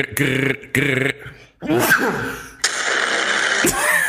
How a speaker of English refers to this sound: Sneeze of epicness.